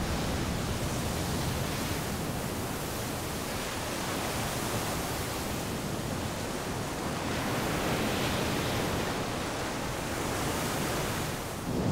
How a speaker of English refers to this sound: Once an island emerges from the water, a new battle starts between land and sea. The power of the waves collides against the ramparts of the volcano. Its foundation amplifies the swell, and its roof can be wiped out by a single set of waves.